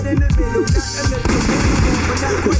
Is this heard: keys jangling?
no